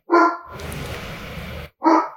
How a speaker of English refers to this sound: Sorry, dog is going to bark.